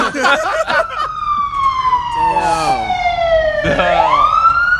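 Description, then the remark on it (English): A loud siren wails with a long, slowly falling tone, then sweeps back upward as an emergency vehicle passes outside; brief voices chatter at the very start. “We took a brief pause for these fucking sirens.”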